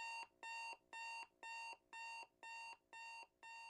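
Alarm clocks go off in the morning, beeping in a steady, rapid rhythm, roughly eight evenly spaced electronic tones, each a bright buzzing pulse. It sounds fairly faint and distant, with no voices.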